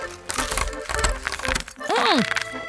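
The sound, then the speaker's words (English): Dry, uncooked spaghetti being bitten and crunched: a rapid, irregular run of sharp cracks and snaps, then a short voiced exclamation with a rising-and-falling pitch. “Crunchy!”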